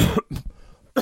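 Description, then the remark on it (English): A loud cough from a man in a couple of sharp bursts, with a short throaty rasp between them and a brief pause, then another harsh burst at the end. “I was like, now he's got a cough.”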